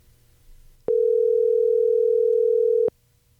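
A telephone dial tone, as a phone is dialed to call a guest, sounds as one loud, steady, unbroken hum for about two seconds, then cuts off abruptly, with only faint low background noise around it and no talking.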